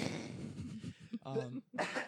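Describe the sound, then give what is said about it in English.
A harsh cough bursts out, with a short throaty vocal sound just before it and another rough burst of noise at the end. “that cough out. It was gross.”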